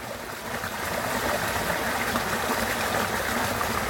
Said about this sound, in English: So that's what was basically, there was no water there not very long ago. And it's flowing really fast. And I don't know exactly where it's come from, but it's just a little, I don't know, it's just a couple of feet across.